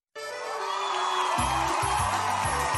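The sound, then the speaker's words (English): A loud, sustained roar from a large cheering crowd kicks in abruptly and stays steady throughout, with deep rhythmic thumps pulsing underneath in the second half. “Hear the roar of the crowd, or is that the roar of your stomach?”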